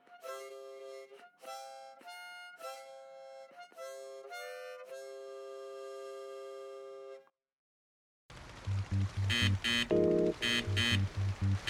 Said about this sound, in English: What's that sound, Briscoe? It's the Roboboat's Robo-Navigator. That buzzer means we should be over Daphne the Guitar's general location.